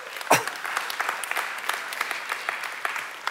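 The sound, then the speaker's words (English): A church audience at a 10:30 service gives a polite, light golf clap: a steady patter of many scattered claps at moderate volume, opening with one sharper, louder clap and continuing evenly for a few seconds. “That's a nice golf clap.”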